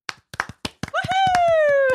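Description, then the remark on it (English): Sharp hand claps in an uneven burst welcoming a guest, joined after a moment by a high, drawn-out whooping cheer while the clapping continues underneath. “I'm like, have we ever clapped a guest in?”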